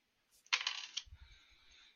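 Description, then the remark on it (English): Dice are re-rolled during a tabletop role-playing game, clattering loudly across a hard surface in a quick burst of rattling clicks, then tumbling and settling with softer knocks and a faint fading rattle. “So you can re-roll up to two dice.”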